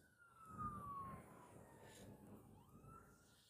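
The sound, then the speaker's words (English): A fire truck siren wails, its tone sliding downward as it passes, then rising again, over a heavy rumble of engine and traffic noise. “Yeah, forgive the noise. Another fire truck.”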